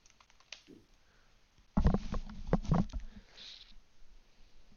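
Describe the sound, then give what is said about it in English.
A dog scratching and chewing at a door: a few light clicks, then a sudden flurry of rapid scraping and clattering taps for over a second, trailing off into softer gnawing rustles. “My dog's scratching at the door.”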